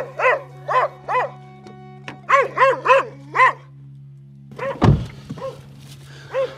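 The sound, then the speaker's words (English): A dog barks repeatedly at a door as reporters knock on doors: a burst of three barks, then a faster run of four, followed by a sharp thump and a few rougher, scattered barks. No one speaks. “One dog does not like me.”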